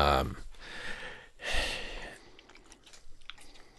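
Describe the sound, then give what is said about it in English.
Two loud, breathy bursts of a puppy sniffing right at the microphone, followed by softer, irregular snuffling and faint rustling. No one speaks. “You're going to sniff the mic?”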